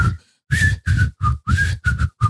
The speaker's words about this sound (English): I'm pretty good at whistling, too. You want to hear?